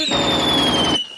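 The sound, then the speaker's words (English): A loud, dense burst of rapid bangs from the finale of a fireworks display, blurring into a continuous crackling roar, with a high whistling tone over it, lasting about a second before cutting off. No one speaks. “Wait, there's shooting during this finale?”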